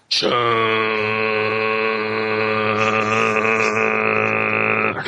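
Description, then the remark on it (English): A garage door grinds slowly open, a steady, loud mechanical hum with a buzzing, droning tone that holds evenly for about five seconds before cutting off. No one speaks. “As the door slowly opens.”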